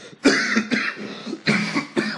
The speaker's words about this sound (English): it wasn't me coughing, though. So don't get that in your heads.